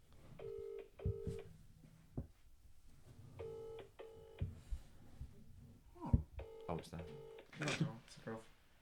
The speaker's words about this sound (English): And it's the first phone call for the podcast.